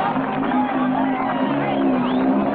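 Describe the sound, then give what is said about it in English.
A crowd cheers and applauds steadily as a motorcycle rider does a wheelie and rides around a ring past a ramp and trucks, with whoops and raised voices rising over a dense wash of clapping and babble that stays loud throughout. “The crowd smiles and applauds.”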